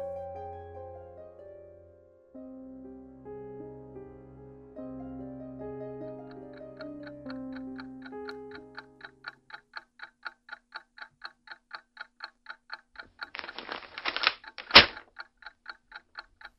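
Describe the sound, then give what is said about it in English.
Soft music fades into a steady clock ticking at an even pace, interrupted briefly by a louder rattling burst before the regular ticks resume. “leave the clock alone and put down that paper.”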